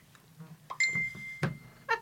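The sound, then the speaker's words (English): A mobile phone rings with bright electronic tones: a sustained high note held for about half a second, then a quick chirpy burst, amid faint murmuring voices. “I should have said about switching the phone off.”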